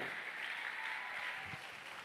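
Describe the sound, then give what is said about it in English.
A church audience claps together during a sermon in a dense, sustained burst of applause, an 'empowerment clap'. A steady wash of many hands fills the room at a fairly loud level for its whole length, with no one speaking. “Can I get an empowerment clap in the building?”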